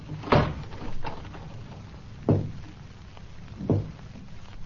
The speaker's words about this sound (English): Dan, were you knocking at this door?